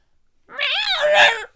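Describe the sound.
A voice imitates a cat's meow: one drawn-out, wavering mew lasting about a second, fairly loud, rising and then falling in pitch, with no other talk.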